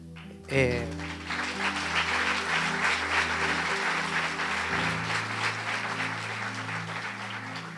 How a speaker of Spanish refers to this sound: Y ese aplauso debe ser siempre para nuestro Señor, porque Él es real.